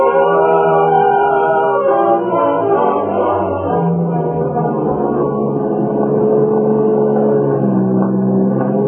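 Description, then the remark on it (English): A car engine rumbles steadily and loudly throughout, a continuous motor drone with no voices and no clear fade, as the car with Jim Tabor at the wheel and Harriet aboard pulls away, getting away. “Yet now, here before my eyes, Harriet had stepped into a car with him, and they were getting away.”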